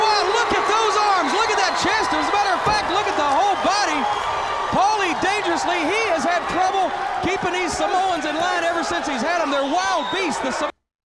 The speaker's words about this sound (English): Look at this crowd. Amazing. Let's take a listen. Crowd's popping pretty hard.